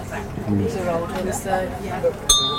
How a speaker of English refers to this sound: Ooh. Whoa. It's deafening. It's like a school bell.